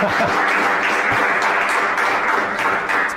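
Steady, dense applause from an audience, a continuous wash of many hands clapping at an even loudness for a few seconds, with no break or fade.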